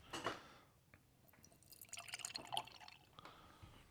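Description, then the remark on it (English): Mikkeller Traeblood 2022 beer, canned a few days earlier, is poured from a can into a glass, with a soft, steady gurgling splash and faint fizz over a few seconds. It is fairly quiet, with no talking. “First beer is poured out, and we have the Traeblood 2022 fresh from Mikkeller.”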